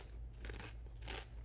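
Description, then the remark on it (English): Two quick crunches of crispy rolled tortilla chips, cheddar-flavored Takis, being bitten, a short pause between them, with no talking over the dry, crackly bites. “This is the Taki. It's fucking two of them. Oh! Double crunch.”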